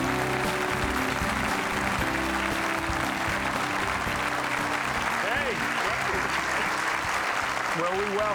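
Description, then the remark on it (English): The studio audience of the TV show Life Today applauds steadily, a dense wash of clapping that fills the room for several seconds, with a few faint voices and whoops mixed in underneath. “This is some kind of nice audience. Are you clapping there at home?”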